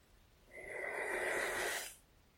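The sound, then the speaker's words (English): A single slow, deep inhalation, clear, a breathy rush that swells for about a second and a half before stopping, with a faint whistling tone running through it. No one speaks. “Deep breath in.”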